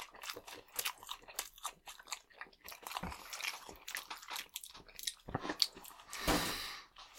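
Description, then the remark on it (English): Crunching and chewing on fried chicken legs and tenders, a dense series of crisp, irregular bites and mouth sounds, with a louder burst of crackly crunching near the end and no talking. “This is like the platonic ideal of fried chicken.”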